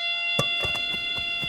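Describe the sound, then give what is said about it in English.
A buzzing base in blind baseball, which sounds once the ball is hit so the batter can run toward it, gives off a steady, high electronic drone with a rich, harsh tone, while soft thumps land roughly every quarter second beneath it. “As soon as it starts buzzing, they run toward that sound.”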